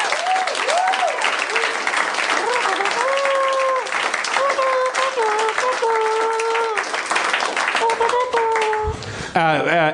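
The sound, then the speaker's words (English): An audience at Meltdown on Sunset applauds steadily at the end of a live campaign chapter, dense clapping while a few voices call out and cheer over it, the applause holding strong throughout. “Yeah, applause.”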